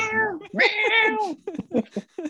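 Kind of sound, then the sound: animal, cat meowing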